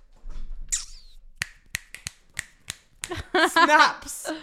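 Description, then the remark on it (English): A quick series of about seven crisp finger snaps, sharp, in an uneven rhythm, followed by a brief burst of someone talking. “if you snap your fingers, you could erase every”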